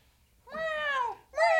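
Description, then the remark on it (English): A cat meows twice up close: a long, drawn-out meow that slides downward in pitch, then a brief pause and a shorter, sharper second meow, with no talking. “Meow! Meow! I said no, Animal Act!”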